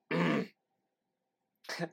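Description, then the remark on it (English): Someone clears their throat twice, a strong rasping burst followed by a shorter, lighter one after a brief pause, with silence around them. “Sorry, I'd be like, clear my throat.”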